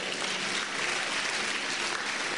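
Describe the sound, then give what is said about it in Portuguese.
Dense, steady applause from a large audience fills the whole stretch, many hands clapping at once in a continuous roar with no voices standing out. “I mean, you see the way you are clapping?”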